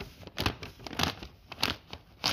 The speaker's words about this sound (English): Did you hear that? Recognize it maybe? It was me tearing a page out of a book. I was brought up and trained to love and respect books, not tear them up.